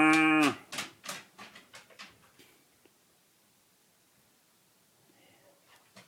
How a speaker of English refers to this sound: There's a cow across the floor.